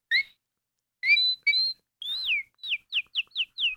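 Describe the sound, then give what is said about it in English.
Someone whistles an improvised birdcall: a couple of warbling two-tone phrases, then a quick run of five descending chirpy notes, with no talking. “I just whistle. Give me another bird. I just make it up.”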